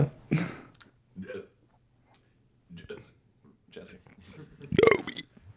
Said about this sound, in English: Nice, I like burping the word burp.